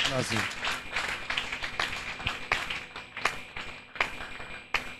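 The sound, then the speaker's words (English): A crowd claps their hands for several seconds, a dense patter of sharp, overlapping claps with occasional louder accents, a voice briefly audible at the very start. “Clap your hands.”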